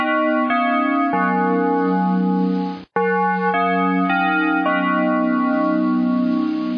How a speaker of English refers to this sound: Just a quick bell ring and we're back.